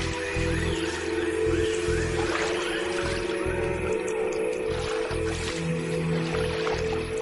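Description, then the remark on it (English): A Jesus Christ lizard runs across a water surface, its little feet driven down hard and fast, skittering and pattering in a quick run of light splashes over several seconds, with a steady low hum underneath and no voices. “This skitter across the surface of the water earns it precious seconds and the nickname Jesus Christ Lizard.”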